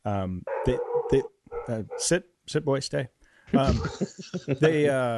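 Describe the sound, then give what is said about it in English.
A small fluffy dog weighing about 8 pounds barks repeatedly in short, high-pitched bursts with brief pauses between them, fairly loud, ending in a longer whiny yip. “It's if you could see this terrifying loath wolf. And that's a ball of fluff that weighs 8 pounds.”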